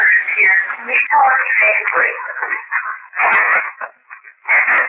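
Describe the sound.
Thin, tinny hiss from an EVP recording being played back, with a muffled, indistinct voice-like murmur running through the static, fairly loud and nearly continuous, dipping briefly before surging back up.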